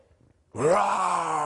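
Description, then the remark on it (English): A preacher imitates a lion's roar while telling the biblical story of the young prophet killed by a lion: one long, loud, growling vocal bellow that starts abruptly after a brief quiet and holds steady with a deep harmonic rumble. “There's a lion roaring off in the distance that's going to take the life of the young prophet because he disobeyed the word of the Lord.”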